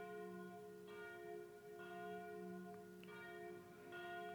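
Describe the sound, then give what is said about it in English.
Church bells ring steadily with overlapping strikes roughly every second, their long resonant tones layering into a continuous shimmering peal, heard alone with no talking. “And I'm just going to pause here so you can hear the bells.”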